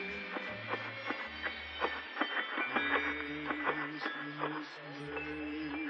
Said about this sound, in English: Like, we have this one called Santa's Marching Band that's you know, it's in Kmart and everything else. It's eight little motorized figures that hit actual metal bells with hammers. Here, I can make it go for you.